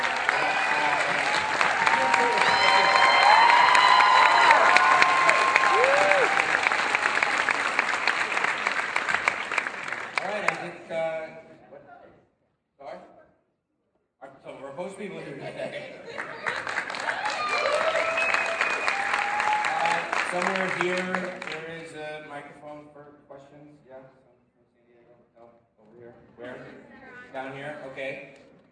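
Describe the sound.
A crowd bursts into loud, sustained clapping with scattered cheers for the writers of the show who are in the audience, fades briefly, then swells into a second long round of applause before tapering off, with a voice speaking near the end.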